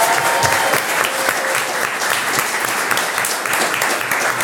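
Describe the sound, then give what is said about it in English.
An audience applauds a guest being introduced on a show, a dense, even wash of many hands clapping at a fairly loud level throughout, with no voices rising above it. “Please give her a huge round of applause, ladies and gents.”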